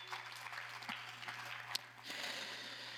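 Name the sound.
round of applause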